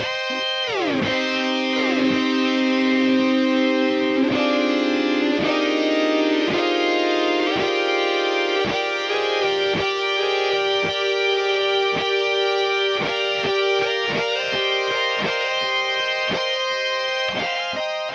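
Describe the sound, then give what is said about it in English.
An effected electric guitar plays a solo, a steady run of evenly picked notes in a bright, harmonic-rich tone, with an effect adding generated notes three, five and twelve notes above each played note and echo making each note ring into the next. An early note bends upward. No voices. “There's some echo added to this guitar as well, which creates overlap between the notes, adding even more texture and depth to the solo.”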